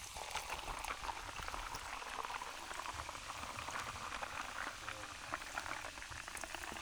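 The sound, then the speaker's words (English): A fizzing drink poured right beside the microphone, a dense, steady crackle of bubbles and liquid that stays loud and close for the whole stretch. “Yeah, and then we got to pour into the microphone too.”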